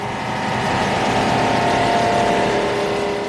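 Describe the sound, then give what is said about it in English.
The motors of many fishing boats coming out of the fog on the Joro Lagoon drone together in a loud, steady, continuous hum that swells slightly at first and then holds, with no voices. “Countless fisher boats appear from the fog like ghosts.”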